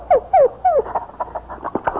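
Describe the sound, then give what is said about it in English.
A dog lets out three high, falling whimpers in quick succession, then a rapid run of short, excited yips and barks, with no one talking. “Say, you've got a dog and a beauty.”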